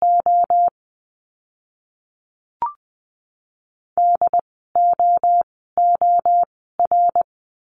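Morse code practice words for the letter D at 20 words per minute: crisp bursts of a single steady mid-pitched tone in quick dot-and-dash groups, a short burst, a pause with one faint click, then four more groups.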